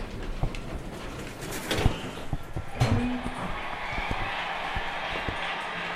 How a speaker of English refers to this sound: While we were in Edinburgh, we dropped into the National Museum of Scotland on Chambers Street and took the lift up to the Science and Technology exhibition. Doors opening.